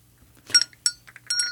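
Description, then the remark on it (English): A small servant's summoning bell rings in a few quick, bright jangles, the last one lingering with a clear metallic tone. It is moderately loud, with no voices. “Is that the bell from the Dowager Countess's chambers?”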